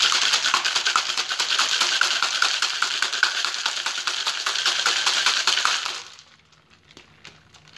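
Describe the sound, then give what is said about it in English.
Ice rattles hard inside a cocktail shaker as a cocktail with Peychaud bitters and orange bitters is shaken until cold, in a loud, rapid, steady clatter for about six seconds, then stops abruptly, leaving near silence. “Then you want to shake it until it's nice and cold.”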